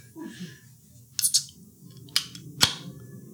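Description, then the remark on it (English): A few sharp clicks and snaps, then a louder crack as a drink container is opened, over a low background rumble. “I'm gonna crack it open.”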